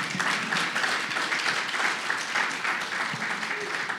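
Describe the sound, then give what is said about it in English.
An audience applauds a woman introduced as a mountain guide, dense overlapping claps forming a continuous rustling wash that holds at an even, fairly loud level for the whole stretch. “You can give her another round of applause if you want.”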